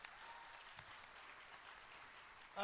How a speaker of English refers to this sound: Thank you so much for being here. Go ahead and clap.